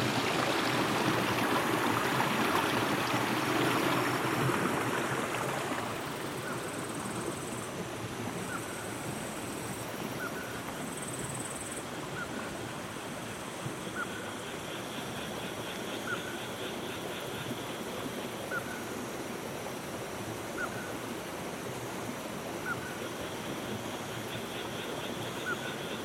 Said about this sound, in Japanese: 昨日と今日とやっと晴れて、でもそれまでの雨がたっぷり溜まっているので、川の水量は結構あります。